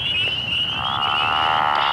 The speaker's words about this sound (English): Woodland ponds, river sloughs, or even water-filled ditches are often used for egg laying. Here is the voice of the pickerel frog.